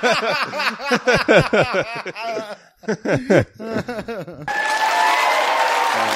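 audience applause and cheering

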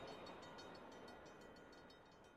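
train passing by outside

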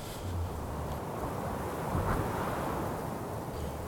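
wind

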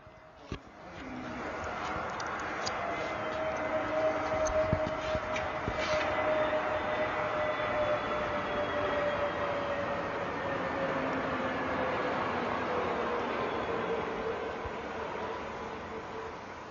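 airplane flying over

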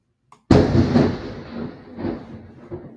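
crack of thunder

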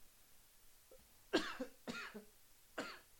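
sneeze

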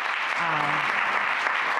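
round of applause

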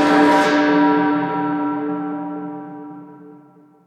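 tolling bell sound effect

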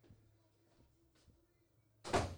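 door being closed

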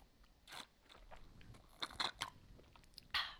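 sipping

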